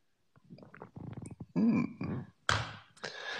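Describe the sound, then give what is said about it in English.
Coffee being sipped and swallowed, with wet gurgling gulps in quick succession, followed by a couple of sharp, breathy exhales. “And join me for the simultaneous sip. It happens now.”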